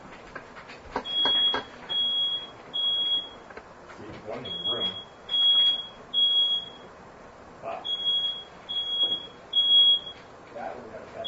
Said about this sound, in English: Ooh, smoke alarm. Yeah. That's a pretty quiet smoke alarm, honestly. Will that thing turn off eventually?